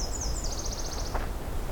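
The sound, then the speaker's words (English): A high, thin Nashville warbler song: a few slower repeated notes run into a quicker, rapid trill, moderately faint over steady outdoor background noise with no one talking. “A slow trill followed by a fast one.”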